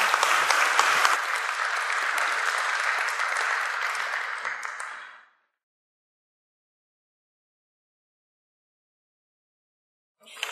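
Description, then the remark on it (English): A crowd applauds steadily with dense, bright clapping for about five seconds, then it fades quickly into silence before a brief burst of sound at the very end. “Give these folks a round of applause.”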